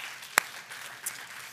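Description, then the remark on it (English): A church audience at Vibrant Church applauds on a Sunday morning in a steady, hissy wash of clapping, with one sharp, loud crack standing out early and a fainter one later; no one speaks. “Let me tell you what, give it up for yourselves.”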